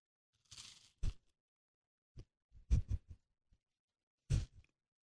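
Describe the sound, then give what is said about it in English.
Crunchy food being chewed in a few separate bursts, with sharp crackling bites spaced irregularly across several seconds and quiet pauses between them, no talking. “It's crunchy.”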